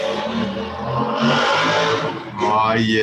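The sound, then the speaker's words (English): A motorcycle engine roars past, revving loudly with a rising and falling whine over about three seconds, and faint voices are mixed in underneath. “I don't know how hard you guys can, or how if you guys could hear that very well, but there was a motorcycle.”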